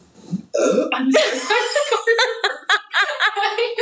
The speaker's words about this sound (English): I had to burp out loud. Sorry about that. Excuse us.